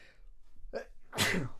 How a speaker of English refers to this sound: Oh, God. Start talking about weed, I start sneezing. I'm getting a nosegasm right there.